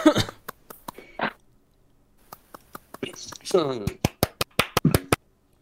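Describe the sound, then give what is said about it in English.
A few rough, raspy throat-clearing bursts to clear coffee from the throat, one brief and one longer with a voiced rise, mixed among sharp clicking or clapping hits that end in a fast, loud run. “Gotta get the coffee out of my throat.”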